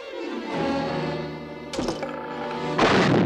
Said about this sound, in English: Sounded like an explosion. It sounded like chunks of human flesh being ripped apart and smeared all over a cave wall. It's just brutal. I love the sudden, just the clunk of the grenade and then kaboom!